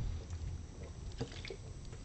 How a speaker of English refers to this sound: Let me get a drink here of my Pepsi Mango.